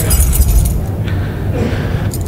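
Keys jangle in a bright metallic rattle at the start, go quiet in the middle, then give a second short shake at the end, over a low background rumble.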